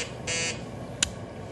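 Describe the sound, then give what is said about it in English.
An emergency signal on the state radio: a short, bright electronic tone sounds for about a quarter second over a low background hum, followed by a brief sharp click or blip a moment later; no one speaks. “Hey, emergency signal on the state radio.”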